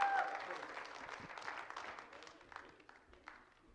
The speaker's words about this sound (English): Let's give him one more hand.